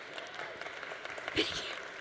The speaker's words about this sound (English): Y'all are like clap happy today. Let's keep going. It feels good.